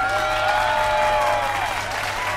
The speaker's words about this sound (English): Thank you. Thank you so much, but it's not me you should be applauding. It is our brave boys overseas.